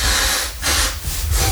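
Someone blows their nose in three loud, rushing bursts with short pauses between them, the wet, hissing exhalations sounding rough and congested.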